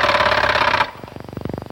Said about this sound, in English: Show him your new Mattel Thunderbird gun, Billy. It fires with a real vibrating action in an entirely new way.